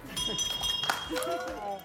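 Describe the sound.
ESPN college basketball announcer Dick Vitale rings a bell on finishing his cancer treatments: a bright, sustained high-pitched tone that lingers for over a second, with a sharper strike partway through, while several voices talk and cheer over it.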